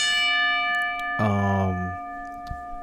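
A bell is struck three times in slow succession as a salute in memory of a relative who passed away, each ring a bright, sustained metallic tone with a long shimmering decay. One strike stands out loudly mid-clip, and there is no talking.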